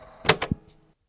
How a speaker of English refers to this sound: What the? Oh my god. A door just opened from the bookshelf. Sure, that's not creepy at all.